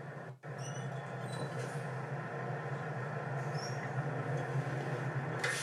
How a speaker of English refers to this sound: It's all air brakes. I'm going to roll forward 5 miles per hour. I'm going to check my service brakes. Make sure my service brakes are working, they stop the vehicle, I'm not pulling left or right.